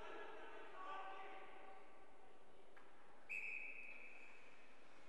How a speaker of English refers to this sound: Final minute of the game. We get another whistle.